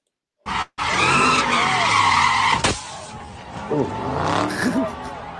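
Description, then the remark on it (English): Car tires screech loudly in a sustained skid for about two seconds as a car does street donuts with four or five people hanging out of it, then an engine drones on more quietly while people talk over it. “They were doing like clearly a donut street race thing of some sort, and there was sure.”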